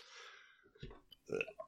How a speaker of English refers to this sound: Hang on. I got the hiccups and...